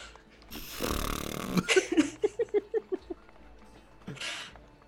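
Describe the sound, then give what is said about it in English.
A voice imitates a fart: a long breathy blast, then a sputtering run of about eight short, rhythmic pulses, ending with a brief puff of air. It is fairly loud. “I'm gonna make a fart sound out of my aloes.”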